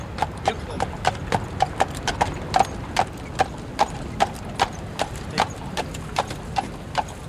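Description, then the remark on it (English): Carriage horses' hooves clip-clop on pavement in Central Park on a sunny day, in a steady, even rhythm, about two or three crisp strikes per second, clear over a low rumble of outdoor background noise. “I see some horses.”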